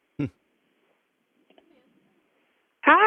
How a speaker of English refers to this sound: your connection's breaking up pretty bad, so I'm not able to hear what you guys are saying much.